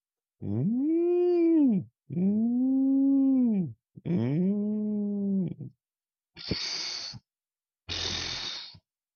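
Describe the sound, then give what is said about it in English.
Three long, mournful whale calls rise and fall in pitch one after another in the ocean, followed by two short breathy whooshes of the whale spitting water out of its blowhole. “and the whale was making its normal whale noises.”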